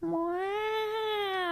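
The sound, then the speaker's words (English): A person imitates a cat with one long, loud meow, a steady drawn-out cry held for about a second and a half, alone. “Track two is cats.”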